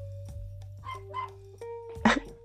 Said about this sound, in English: my daughter's little dog has decided that it does not like the big dogs next to the door. See, I have a pack of pit bulls, and sometimes the pit bulls like to fuck with the little dog.